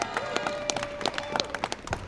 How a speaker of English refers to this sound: Yeah, let's give Cincinnati a round of applause.